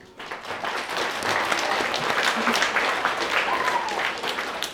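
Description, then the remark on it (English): A crowd at a Camogie final applauds the referees steadily, a dense wash of many hands clapping at a fairly loud, even level for several seconds, with a faint voice or whistle briefly rising through the noise. “It's never easy refing these finals, so a big clap to them as well.”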